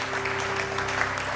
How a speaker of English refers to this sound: Oh, somebody, give the Lord a clap.